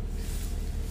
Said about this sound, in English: Yeah, we in the car today, though. We're always in the car.